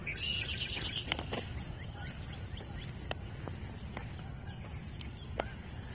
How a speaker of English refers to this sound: listen to the sounds of the birds in the early morning.